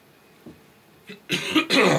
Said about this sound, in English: Bless you. Thank you. Sorry, I was hoping you would fill that space while I coughed, but you know.